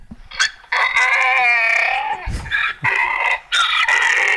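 A donkey brays loudly during mating: a long, strained harmonic cry followed by several shorter honking bursts in an uneven rhythm, with no talking.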